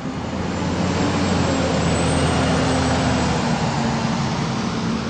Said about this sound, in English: A fleet of tour buses runs almost nonstop when a ship is in port. Unlike other Southeast communities, Sitka's cruise dock isn't downtown. It's 6 miles north. That means busing tourists is a big part of the equation